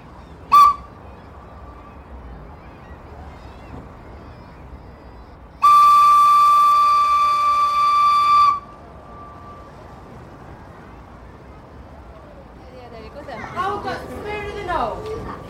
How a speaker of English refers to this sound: once they've got the all the way round, it's a 5 second gap which seems to take forever before the whistles all sound at pretty much exactly on 1 o'clock.